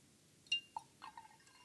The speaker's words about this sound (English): When you finish your tea, I rinse the teaware bowl and ladle with water. I drain the rinsed water to the drainer.